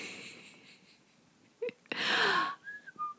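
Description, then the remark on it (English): A breathy rush of air gives way to a few short, lilting whistled notes, fairly soft, like someone idly whistling a little tune. No one speaks. “I appreciate the whistling music.”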